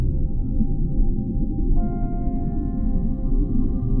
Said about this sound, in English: And the gentle noises of the movement of the whale.